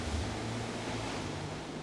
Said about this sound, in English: Around you, the ocean, deep blue and nigh unknowable, laps at the hull, gently rocking you back and forth, back and forth.